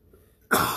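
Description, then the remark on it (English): A single sharp cough bursts out abruptly after a moment of near silence, fairly loud, with a broad noisy rasp that carries to the end. “Sorry about the cough.”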